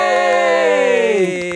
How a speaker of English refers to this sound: I love that you just clapped yourself. I always do.